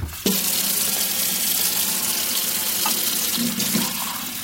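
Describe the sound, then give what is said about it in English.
A kitchen tap runs steadily into a sink while dishes are being washed, a continuous splashing hiss that starts abruptly and carries on with faint clinks of dishes underneath, no talking. “I was washing the dishes when he came by with more solar bids.”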